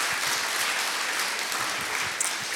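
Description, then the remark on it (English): The audience of Life Church applauds its guests steadily, a dense, sustained wash of many hands clapping at once with no pauses, fairly loud and even throughout. “Can our church give a good clap for our guests that are here?”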